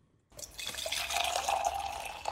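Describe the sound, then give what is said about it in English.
Hot water pours steadily into a container for about two seconds, a continuous splashing rush with a faint rising gurgle as the vessel fills. No one speaks. “Yeah, that's hot water. The second one's hot.”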